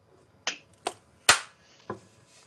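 Four sharp, separate claps or snaps spaced unevenly over about two seconds, the third the loudest, with quiet background and no talking.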